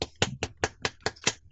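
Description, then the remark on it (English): Seven sharp finger snaps in a quick, steady rhythm, each a crisp, bright crack with a short tail, heard alone with no talking. “I'm snapping right now.”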